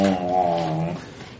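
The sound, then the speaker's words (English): A voice imitates the whale-like sound of a drill on the right hand of a large figure in an armored diving suit, a Big Daddy from Bioshock. It is a low, moaning groan, a single sustained call with strong harmonics that wavers in pitch for about a second before trailing off into a rough, breathy fade. “With his right hand is a drill, and it starts making this sort of like whale sound toward you.”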